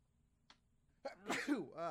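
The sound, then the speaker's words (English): A single loud sneeze with a sharp breathy burst and a drawn-out voiced tail, following a moment of near silence broken only by a faint click. “Gesundheit.”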